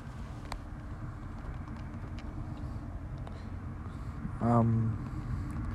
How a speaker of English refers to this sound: This car passing by right up.